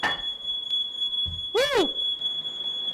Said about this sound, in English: And there is the song, the music of our people, the smoke detector.